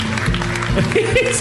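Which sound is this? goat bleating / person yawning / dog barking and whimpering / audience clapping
audience clapping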